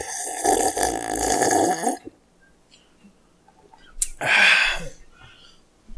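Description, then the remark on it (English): A loud, wet slurp of Terry Porter beer, a porter, at the microphone, lasting about two seconds, followed by a quiet pause and then a short, breathy exhale of satisfaction. “Here, listen to me slurp it on the microphone.”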